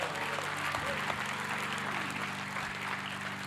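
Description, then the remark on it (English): A church audience claps for the worship team in a dense, continuous wash of applause that holds at an even level for several seconds, with a low sustained hum or organ-like tone underneath. “Let's give another round of applause to our worship team.”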